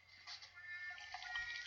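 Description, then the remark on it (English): Soft sipping of cold champagne from a glass, a few faint wet slurps and lip sounds spread over a couple of seconds against a quiet low hum, with no talking. “Sipping.”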